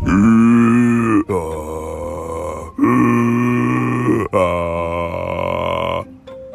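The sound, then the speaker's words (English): A voice imitates a snow monster's heavy breathing in an icy cave with four loud, drawn-out, growling breaths, each separated by a brief pause, forceful. “And then pretty soon, oh my gosh, he could hear something breathing like this.”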